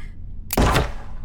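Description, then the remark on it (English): A stuck door that won't budge is shoved hard, giving one loud wooden thunk that rings briefly and fades, with a low background rumble before and after and no voices. “The door still won't budge.”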